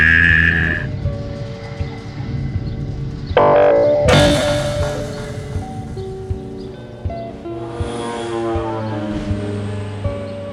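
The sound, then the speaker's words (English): Whale calls: long, moaning tones that rise and fall in pitch, with one sharp whooping cry partway through, loud with no voices. “Is that me or is that the whales?”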